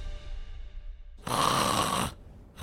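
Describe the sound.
A voice mimics a loud, rasping snore in one long, harsh burst of about a second, followed by the start of another, prominent with no talking.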